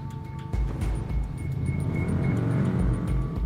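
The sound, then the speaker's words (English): A deep, steady hum of the motorcycle engines of a gang of bikers leading a funeral cortege, growing closer, loud and continuous with a slight pulsing throb, and no voices. “It was the deep, bouncing hum of engines.”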